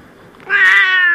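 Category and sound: animal, cat meowing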